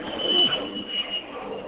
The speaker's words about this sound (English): We're getting some airplane sounds.